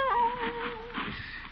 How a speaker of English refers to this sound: Oh, a cat. Kitty, one of us will have to get out of here. Go away now. Scat.